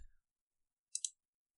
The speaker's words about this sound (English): no talking, just some keyboard sounds